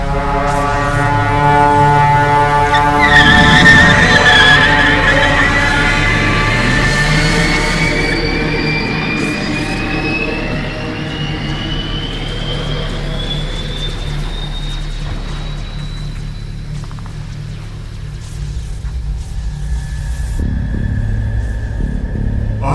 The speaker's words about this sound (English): Vehicle moving at its maximum speed.